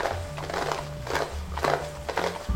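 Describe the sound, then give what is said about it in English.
Hooves of two white horses clip-clop at a steady, even pace over the low rolling rumble of the criminal's wagon they pull, carrying a condemned man to the gallows in West Virginia; the hoofbeats are moderately loud, with no voices. “It was hauled in a criminal's wagon drawn by two white horses.”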